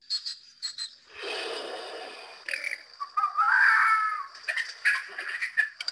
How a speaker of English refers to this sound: Oh my gosh, my kids would eat that up. Did you hear the deer breath?